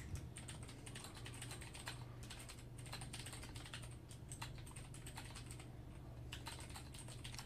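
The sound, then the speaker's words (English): Rapid, clicky keystrokes on a computer keyboard, typed in steady bursts over a low constant hum, with no talking. “See, that's my keyboard. My keyboard's a clickety clacker.”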